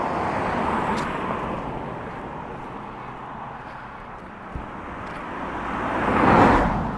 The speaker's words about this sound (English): So we're on the road now. You can probably hear the traffic. Only a couple hundred yards along the road, and it's Friday afternoon.